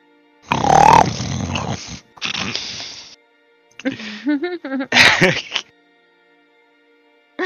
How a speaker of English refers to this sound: You hear the grunts and snores and smacking lips of Gurn from the other side of the dome, breaking this silence.